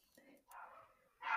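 A dog gives a single short, sharp bark near the end, after a stretch of soft, muffled vocal murmuring.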